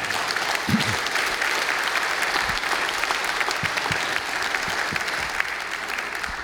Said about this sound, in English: But your clapping won't get rid of me.